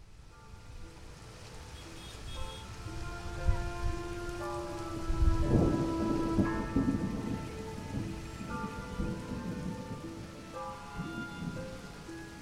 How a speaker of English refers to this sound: Storms come in all shapes and sizes. Striding through swollen puddles in a dismal downpour